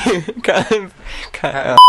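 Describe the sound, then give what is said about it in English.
A person talks in quick bursts, then a loud, steady, high-pitched censor bleep abruptly cuts in at the very end. “A few bleeps, don't it?”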